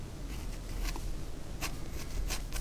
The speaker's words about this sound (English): Well, this paper's really noisy. I don't usually use like rough paper.